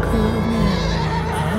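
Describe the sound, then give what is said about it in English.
A racehorse whinnies in a loud, drawn-out neigh with a wavering pitch that rises and falls, over a steady background rumble. “Can't get attached to the horse.”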